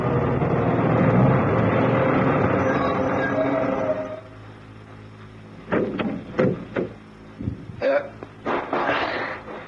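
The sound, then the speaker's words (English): A heavy 10-ton truck pulls in, its engine rumbling steadily for about four seconds, then cuts out, leaving almost quiet broken by a series of sharp clunks and knocks. “Who would want to steal a 10-ton truck?”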